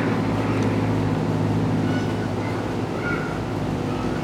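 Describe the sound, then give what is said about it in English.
A helicopter drones steadily overhead, a continuous low engine rumble with a faint rhythmic throb that holds at the same loudness throughout, with no voices. “So you just gonna fly your helicopter while we recording?”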